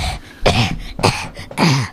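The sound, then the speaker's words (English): A person imitates a dry cough three times in quick succession, each burst short and raspy, with brief pauses between them and no talking. “Except his cough is significantly drier.”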